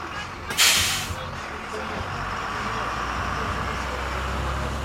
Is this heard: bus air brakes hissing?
yes